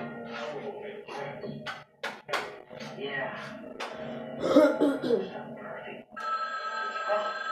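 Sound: telephone ringing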